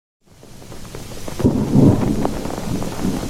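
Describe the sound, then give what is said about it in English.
A thunderstorm over the Baltic Sea with steady rain, low rumbling thunder rolling in and swelling loudly around the middle, a sharp crack near the start, and a constant hiss of rainfall throughout. “Sailing into the Baltic Sea, the Frau Maria hit stormy weather that lasted for days.”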